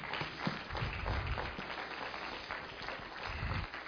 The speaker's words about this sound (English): Well, if you understand that, give the Lord a hand clap.